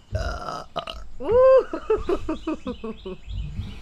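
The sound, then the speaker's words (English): A loud, drawn-out belch with a croaky, rising-and-falling pitch, rumbling on for a few seconds before trailing off into a few gurgling bursts. “That's the second belch of yours I've got on camera.”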